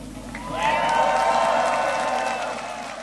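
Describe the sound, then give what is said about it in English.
A crowd of thousands in Warsaw, Poland, including Polish citizens and Ukrainian refugees, cheers and whoops loudly as President Joe Biden addresses them: a sustained roar of many voices with high shouts rising over it, swelling after the first half second and holding steady. “Biden addressed a cheering crowd of thousands that included Polish citizens and Ukrainian refugees.”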